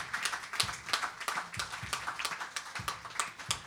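A crowd applauds steadily, many hands clapping in a dense, irregular patter that holds at a fairly even, moderate level throughout, with no voices over it.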